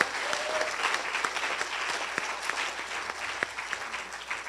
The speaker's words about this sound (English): All these helpers, let's give a clap.